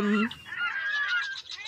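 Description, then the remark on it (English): Seagulls squawking loudly: a quick harsh call followed by a longer, drawn-out wavering cry, with no one talking over them. “Those are the seagulls circling the body of Osama bin Laden.”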